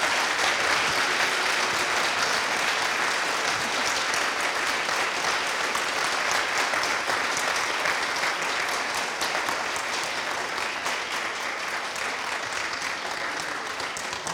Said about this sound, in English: please give them a huge round of applause.